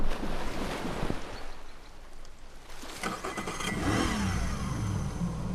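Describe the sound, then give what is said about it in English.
A boat engine revs loudly, its roar rising and surging over a steady wash of water noise, with no voices heard. “There's the boat. I don't know if we can all fit in the boat.”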